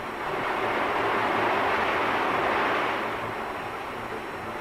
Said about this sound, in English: Here's one of the two basic types, an Owens vacuum machine. A spider-like monster with an insatiable appetite for molten glass. Listen to it.